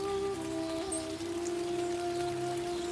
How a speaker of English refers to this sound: And the rain slowly starts to subside. It's getting less and less.